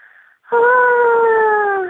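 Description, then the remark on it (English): A single exaggerated breath: a faint short intake, then a long, loud voiced exhale with a whiny, moaning tone that drifts slightly lower over about a second and a half. “These are all one singular breaths as well.”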